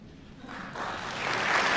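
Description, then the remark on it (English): A crowd applauding at the start of a recording being played back, a dense wash of clapping that swells and grows louder over a couple of seconds, sounding reverberant, with no talking over it. “Let me know if you guys don't hear a little bit of applause up front.”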